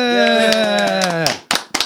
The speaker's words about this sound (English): So I reckon we ought to give them a round of applause, everybody.